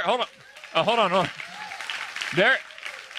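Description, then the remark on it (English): A crowd breaks into steady clapping, a dense wash of overlapping claps running the whole time, with a few short vocal bursts rising above it. “Don't clap yet.”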